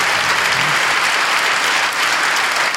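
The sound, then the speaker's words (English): A large live audience at the 6th and I Historic Synagogue in Washington, D.C., in March 2014, claps steadily and loudly, a dense, continuous wash of applause filling the room with no voices standing out. “the Gabfest is live tonight in front of a rowdy but brilliant and handsome crowd”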